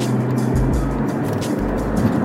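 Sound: car driving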